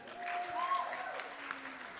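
A crowd applauds steadily for about two seconds, a dense, even patter of many hands clapping at once, with a brief whistle-like cheer rising over it near the start.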